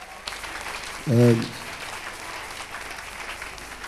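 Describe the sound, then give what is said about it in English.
An audience claps steadily for several seconds for Christ, a dense wash of many hands. A single low voice briefly rings out over the applause partway through. “You are clapping for him.”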